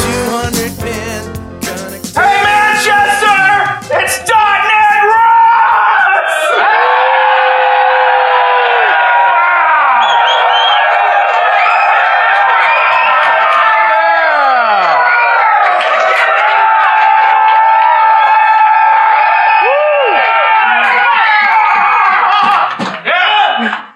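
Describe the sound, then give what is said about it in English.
A large live audience in Manchester, UK, cheers, whoops and whistles continuously, a dense roar of many voices with rising and falling shouts that swells, holds steady, then cuts off. “Wow, what wow, a crowd. Amazing.”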